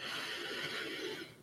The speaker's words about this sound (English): Allow yourself to fully enjoy just feeling good in this moment, right now. One more beautiful cleansing breath.